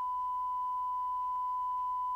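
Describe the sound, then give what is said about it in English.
A steady, unbroken test-pattern tone like the one that plays over TV color bars, a single pure pitch held at even volume throughout, with faint low hum underneath and no voices. “And then early in the morning, it would go to the color bars with that beeping sound.”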